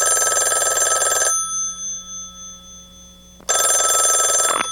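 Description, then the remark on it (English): A telephone bell rings loudly in two long bursts separated by a pause of about two seconds, with no voices present, as part of a song. “but they used a telephone in this song.”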